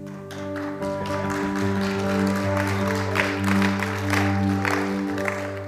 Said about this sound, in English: Come on, everyone. Clap your hands.